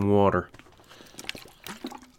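A short burst of water being poured and splashing, with a rising gurgle as a glass fills, after a brief hummed vocal sound at the start.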